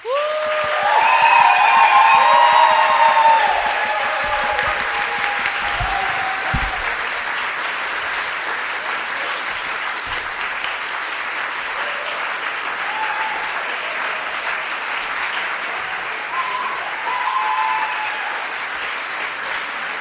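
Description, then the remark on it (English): A church crowd claps steadily for about twenty seconds as a speaker comes up, loudest in the first few seconds and then settling into sustained applause, with a few scattered cheers and whoops rising above the clapping. “So as he comes up, can we give him a big round of applause?”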